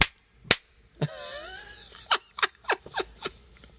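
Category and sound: human body sound, slap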